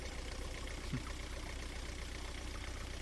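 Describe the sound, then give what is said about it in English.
A boat engine idles steadily throughout, a constant low rumble with a rough mechanical texture and no voices, holding at an even, moderate level from start to finish. “I'm on a boat.”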